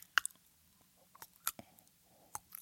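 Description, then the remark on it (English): Faint, wet squishy footsteps of shoes on a floor, a handful of irregular squelching steps with short smacking clicks and quiet pauses between them, with no voices. “He walks. That's the sound his shoes make for some reason.”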